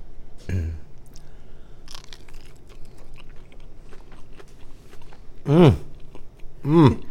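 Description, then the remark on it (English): Crunching as a breaded, deep-fried crab lump bite, dipped in smoked pepper aioli, is bitten and chewed: a sharp crunch or two, then steady smaller crackling chews, followed by two appreciative hummed murmurs from the eater. “It's got a nice crunch to it, too.”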